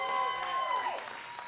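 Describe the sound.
An audience applauds with a dense, steady wash of clapping that fades slightly toward the end, while a voice carries faintly over the top.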